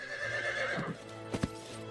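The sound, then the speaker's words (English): A horse whinnies with a harmonic, wavering call, followed by a couple of sharp hoof clops, all without any voices; Sam Houston mounting his horse at San Jacinto Creek. “Mounting his horse at San Jacinto Creek, Sam Houston addressed his men.”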